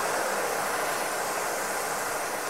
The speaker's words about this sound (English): So it starts with balanced noise.